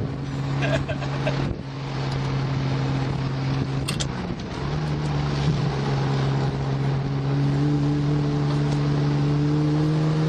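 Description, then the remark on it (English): The engine of a Maranello, a big, heavy GT car on huge tires, drones steadily while driving, its low tone holding then climbing gradually as it pulls along, with road and wind noise throughout. “What's amazing about the Maranello is it's really a GT car, big car, but I mean it's still relatively nimble.”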